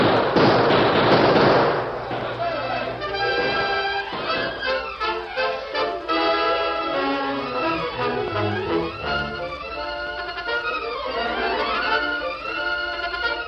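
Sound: gunshots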